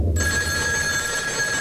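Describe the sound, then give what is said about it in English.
A telephone rings steadily with a bright, sustained electronic tone and buzzy overtones, fairly loud, starting abruptly and continuing without pause over a low rumbling background. “Ah, the phone.”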